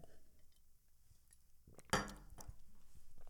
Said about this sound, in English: I've got to drink water here. I'm sorry.